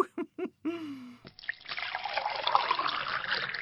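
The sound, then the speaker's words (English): A drink is poured into a glass in a steady, hissing stream for over two seconds, its tone rising as the glass fills, after a few short voiced sounds at the start. “Oh, boys, can I have a larger glass over here?”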